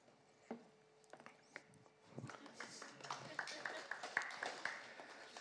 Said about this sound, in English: Three golf claps.